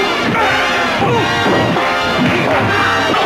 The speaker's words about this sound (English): What was that? That is Batman punching Joker. No, that was the Titan punching all the other lightweights in the half-ton market.